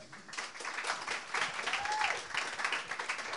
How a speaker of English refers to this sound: I put thy hands, aye, together in resounding applause for thy hosts.